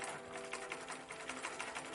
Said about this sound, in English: I qualified and got a sewing machine to start a dressmaking business. I started earning. I then saved for a better sewing machine powered by pedals.